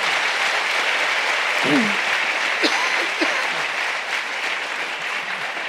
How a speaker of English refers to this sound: You can clap for that.